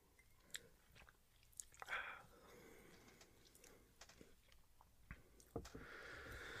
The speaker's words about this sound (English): I have today's a Folgers one. It's a little expensive for what it is as well. I'm taking another sip of it real quick.